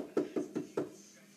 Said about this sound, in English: He's standing at the door. He's knocking.